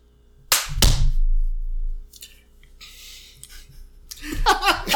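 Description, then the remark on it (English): Two sharp, loud hand claps, made as a marker while recording, land in quick succession, followed by a low rumble, some softer hissing rustles, and then a voice starting to talk. “I'm going to clap because I'm recording this and I don't want to delete it.”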